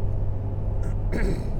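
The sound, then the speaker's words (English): A Dodge diesel pickup truck engine rumbles as it passes, spewing diesel fumes, a steady low drone that briefly swells into a rougher, louder roar, with no voices. “There goes that that Dodge truck spewing diesel fumes again.”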